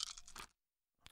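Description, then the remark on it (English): A random handful of six-sided dice, rolled as a hunger roll in a tabletop role-playing game, rattle and clatter in a quick, dense half-second burst, then silence before one last brief clack. No voices. “I'm going to have you roll all of your dice right now”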